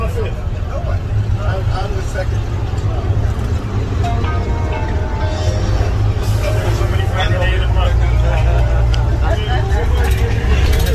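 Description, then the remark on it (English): Steady, loud low engine rumble and road vibration from inside a moving old school bus on a hot day, hours into a trip, continuous throughout, with rattling cabin noise and indistinct voices mixed underneath. “We're on the school bus and we're just making our way.”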